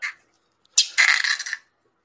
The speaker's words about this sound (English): I bought this like $2 thing of noise putty